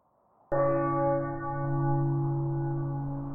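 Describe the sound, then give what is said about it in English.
A single deep church bell sound effect tolls after a brief quiet moment, its rich, ringing overtones lingering loud and steady as the strike slowly hums on. “Can you add like sound effects, like a church bell and like spooky music?”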